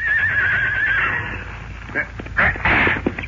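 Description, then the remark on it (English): A horse whinnies loudly, a drawn-out rising and falling neigh for about a second, followed by snorts and shuffling movement with a few voices murmuring in the background, as an escort detail prepares to mount and ride behind a wagon. “I ride my horse and stay behind the wagon.”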